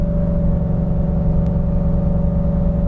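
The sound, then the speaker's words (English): A truck engine drones loudly and steadily as it downshifts while accelerating up a hill at around 3,000 RPM, a continuous low rumble with a sustained hum and no talking. “So it wants to upshift to save fuel, and then as soon as I go to accelerate or I see any kind of incline in the hill, it's downshifting.”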